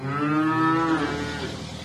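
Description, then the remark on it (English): A single long, low cow moo rings out clearly on a farm in Nalier, western France, at 7 in the morning at breakfast time, its drawn-out harmonic call lasting nearly two seconds before fading, with no talking. “When the cows hear the organic farmer Jan Doob's tractor, they trot to the wall around their stall”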